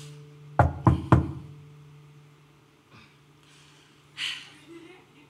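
Three quick, sharp knocks on a door in a steady rhythm, loud, followed by quiet breathing and a soft exhale over a low background hum.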